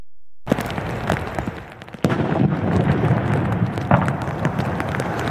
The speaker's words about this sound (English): The VPD's emergency response team conducted a controlled explosion.